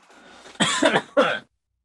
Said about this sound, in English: just getting done coughing from smoking all that Mary